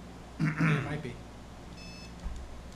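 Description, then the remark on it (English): A short electronic beeping tone rings out, followed by a faint, thin high-pitched whine over a quiet background hum. A voice murmurs briefly in the background. “Is it supposed to beep when it's on, or is it beeping when it's off?”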